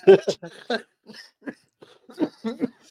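Several short coughing bursts break out amid laughter, arriving in uneven clusters with brief gaps between them.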